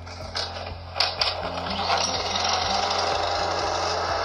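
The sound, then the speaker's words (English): A small gas lawnmower engine is started in the morning: it sputters and catches, a few uneven coughs and bursts settling into a steady, loud mechanical drone with a low rhythmic thrum. “Until my lawnmower finally coughed itself to life.”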